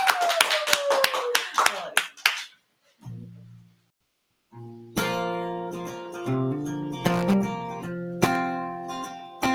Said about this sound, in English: Everybody, let's give him one more round of applause.